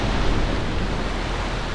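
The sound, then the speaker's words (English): A loud, steady roar of churning water as an enormous serpentine creature bursts from the water, sending water and algae showering, sustained without pause for nearly two seconds with no voices. “Before Beric could finish his word, something enormous burst from the water. A huge serpentine form rose up, sending water and algae showering over the company.”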